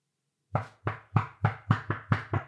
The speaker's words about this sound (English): Why is he knocking?